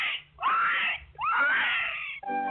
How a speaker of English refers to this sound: And the little pig, he squealed.